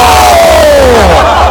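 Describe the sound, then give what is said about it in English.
A loud crowd roars and cheers continuously as a competitor on the field works them up, with rising and falling shouts and whoops riding over a dense, steady wall of voices. “He's getting the crowd going. He's getting them fired up.”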